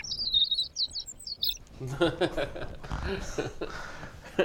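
A quick run of high, bright bird chirps twitters for a second or so, then fades as people start laughing and talking over the end.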